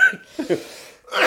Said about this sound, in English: You made me cough.